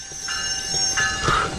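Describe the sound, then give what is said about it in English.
A train rolls loudly along the rails, its wheels letting out a sustained high metallic squeal over a steady rumbling clatter, with no voices. “Stop the train! Stop the train!”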